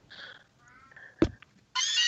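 A synthetic, cat-like cry of the Pokemon Meowth, one of the original Pokemon noises: warbling electronic meow tones, a sharp click in the middle, then a loud, buzzy screech that cuts in at the end, with no talking.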